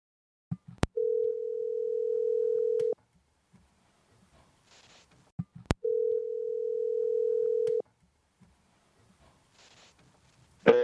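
A phone's ringback tone rings twice, each a steady two-second electronic hum preceded by a sharp click, with quiet pauses between, then a sudden burst as the line picks up; a call to a basketball coach after an evening preseason practice.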